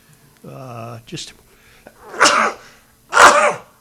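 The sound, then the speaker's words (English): A short voiced gasp, then two loud sneezes about a second apart, each a sharp explosive burst of breath with a quick tail. “Bless you.”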